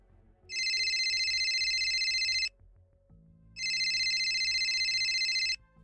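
A cell phone on a coffee table in an apartment living room in Augustus, Illinois, rings with a trilling ringtone in two loud bursts, each lasting about two seconds with a short pause between, over faint low background hum.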